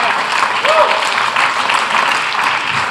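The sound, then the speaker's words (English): An audience claps steadily during a sermon, a dense, continuous wash of many hands that stays loud for the whole stretch without pausing or fading. “Stop clapping.”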